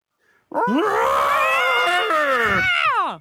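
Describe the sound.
A loud vocal imitation of Godzilla's roar: one long shrieking bellow that rises, holds for a couple of seconds, then bends downward and cuts off.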